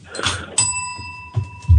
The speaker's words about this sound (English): Hang on. I haven't got my bell. Ding! Oh, I got the bell. Found the bell.